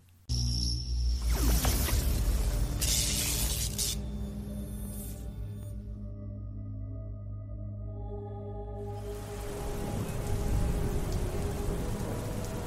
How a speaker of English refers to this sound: The stormy night, cracking, sways the wind sideways across the skies. The rain drenches her pale white skin as her wickedness freezes it to ice and hail as falling gravel the size of stones.